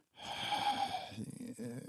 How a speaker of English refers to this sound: I'm just breathing literally the whole time into the camera, nervously.